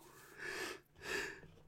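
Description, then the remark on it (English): A soft yawn: a drawn-out breathy inhale and exhale with a faint voiced, whistling tone, heard on its own without any talk. “Sorry, a little yawn there.”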